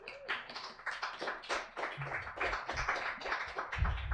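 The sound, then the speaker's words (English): An audience at a literary reading event applauds the first reader steadily, dense overlapping hand claps forming a continuous patter at moderate loudness, with no voices over it. “Already applause, and they don't even know all the awesome things you've done.”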